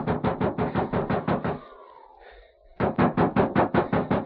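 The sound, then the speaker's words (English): Frantic, rapid knocking on the locked front door of a house during a blizzard, loud, in two quick bursts of about a dozen blows each, separated by a short pause filled with a faint, sliding creak. “Ma, in the name of heaven, Ma, unlock the door.”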